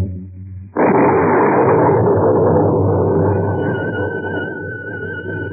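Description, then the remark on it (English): A low rumble breaks into a sudden, loud thunder crash with a flash of lightning lighting up the night sky; it roars on for several seconds, slowly rolling and fading, with a faint high tone rising out of it near the end. “Flash of lightning, like a giant white electric light, lit up the sky that night as I went up the walk.”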